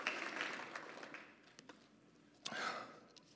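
A small audience claps softly, the applause thinning out after a second or so before a brief swell of clapping near the end. The audience is applauding a man for bringing the speaker a water bottle.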